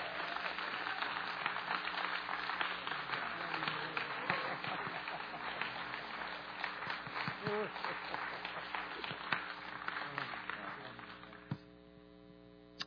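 An audience cheers and applauds in a dense, sustained wash of clapping for about eleven seconds, then it drops away abruptly, leaving a steady low electrical hum.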